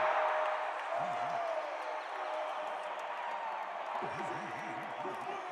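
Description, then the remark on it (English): A large arena crowd at a Denver Nuggets basketball game roars after a three-pointer, in a steady, dense wash of cheering that holds for several seconds, with scattered whoops and shouting rising out of the noise. “Crowd's going to go crazy.”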